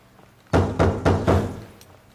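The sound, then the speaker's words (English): Four firm knocks on a wooden door in a quick, steady rhythm, fairly loud, each thud ringing briefly before the next, then quiet. “You are going to answer the door.”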